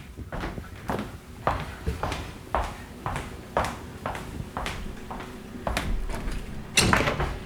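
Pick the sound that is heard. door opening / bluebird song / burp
door opening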